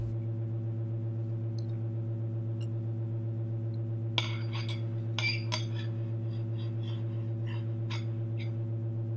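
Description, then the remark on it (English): Two people eating without speaking: serrated sporks clink and scrape against ceramic plates in a loose, irregular run of bright taps during the second half, over the steady, low drone of a great gravitational centrifuge far beneath them throughout. “The only sounds vibrating the air come from their serrated sporks against ceramic plates, and the constant drone of the great gravitational centrifuge far beneath them, which, to most Eternians, is no sound at all.”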